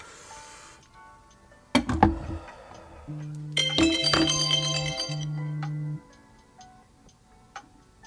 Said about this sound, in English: Alright, sorry guys. My camera cut out for a second there, and for some reason, my alarm went off for work. Well, I know why, because I said it. Sorry, podcast, that you had to hear that.